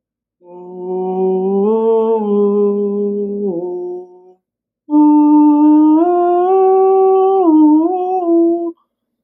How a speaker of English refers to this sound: I've been playing Halo, motherfucker. I've been playing Halo and listening to those old sweet, sweet tunes from the Halo soundtrack.